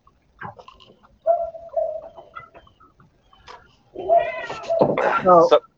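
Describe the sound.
A cat meows several times in the background, with drawn-out, wavering calls that grow louder and more insistent toward the end, mixed with other indistinct voice-like sounds.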